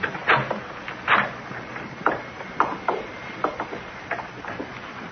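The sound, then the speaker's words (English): A doorknob rattles and turns as police try it, then a door creaks and bumps open, a run of irregular sharp clicks and wooden knocks with no voices. “Lights come in front of the door. Try the knob.”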